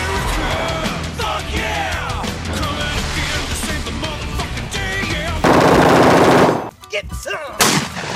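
Rapid bursts of machine gun fire crackle continuously amid shouting and chaotic noise, ending in a loud sustained blast and a few scattered shots.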